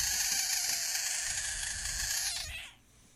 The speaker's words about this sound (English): Oh, what is that? Is that a frog?